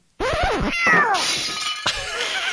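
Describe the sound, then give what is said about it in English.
A cat named Milfred, just woken and annoyed, lets out two loud, drawn-out, irritated yowls, their pitch bending up and down, followed by a brief sharp clatter and some lower grumbling. “On the bright side, Milfred is awake now, although he looks somewhat annoyed.”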